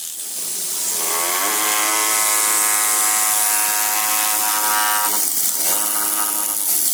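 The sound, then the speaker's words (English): A steady whine of an oscillating power chisel cutting through hard sandstone, its buzzing pitch rising and holding as pressure is applied at the tip, then briefly dropping and resuming for a few seconds, with no talking. “See that when I apply some pressure at the tip of this chisel, it's just oscillating back and forth like a little jackhammer, cutting its way through the rock.”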